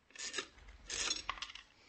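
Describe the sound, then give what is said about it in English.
A dime is tossed into a radio, producing bright, raspy metallic scraping and rattling in two short bursts, with a faint clink in the second, and no voices. “Here's a dime. Throw it in the radio. No? Then I'll throw it a dime.”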